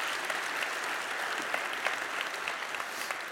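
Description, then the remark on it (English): A steady round of applause from an audience, dense overlapping claps sustained at an even level for a few seconds with no voices over it. “Won't you give her a really good round of applause?”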